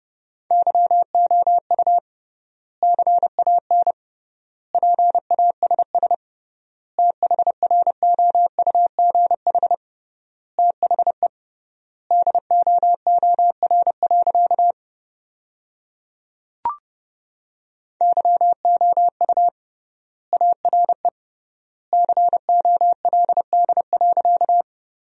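Morse code practice tones at 30 words per minute with 3x word spacing, sending sentences built from the top 400 words: rapid dits and dahs of a single steady mid-pitched beep, keyed in word groups separated by long pauses, with one brief click midway.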